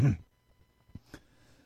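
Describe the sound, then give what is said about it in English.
A soft, brief throat clearing at the very start, a low muffled rasp that fades quickly, followed by quiet room noise with a couple of faint clicks. “I can't cough hard, so I can't clear my throat.”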